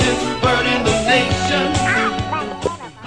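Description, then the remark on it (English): Duck quacks ring out over a steady thumping beat, loud, repeating in a bouncy rhythm like a novelty dance track built from quacking. “Macho, macho, duck.”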